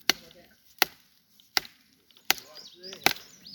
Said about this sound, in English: I'm chopping this tree down by giving it tree knocks. Now I feel bad. I cut into that thing.